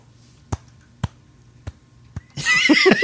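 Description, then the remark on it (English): One person claps slowly to mimic a lone audience member: four sharp, evenly spaced claps over a quiet background, then a loud, warbling burst of voice breaks in. “But you just hear the tiniest little, like, one dude is clapping very, very I'm simulating it for those listening at home.”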